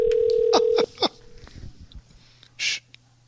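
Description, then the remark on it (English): A steady telephone ringing tone sounds over the line for under a second as an outgoing phone call is placed during a radio broadcast, then drops away, followed by a few short vocal noises and a brief breathy hiss. “All right, let's just make the call.”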